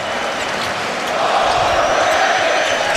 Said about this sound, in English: Crowd starting in with the overrated chants here in game one.